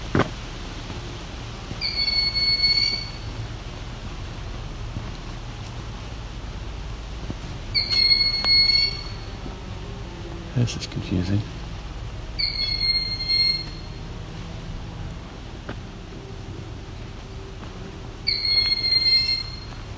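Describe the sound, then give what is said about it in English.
A Cooper's hawk in a forest gives harsh, high-pitched screeching alarm calls, four loud drawn-out screeches spaced about five seconds apart over a quiet outdoor background, with a person briefly speaking. “So I'm looking at what could be a Cooper's honk.”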